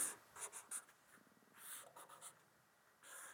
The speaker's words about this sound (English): So you just draw three circles on a piece of paper and connect them with a couple arrows.